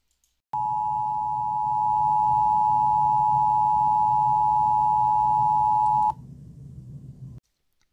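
A steady, loud, mid-pitched emergency broadcast alert tone sounds unbroken for about five and a half seconds over a low rumbling hum, then cuts off abruptly, leaving the hum fading briefly.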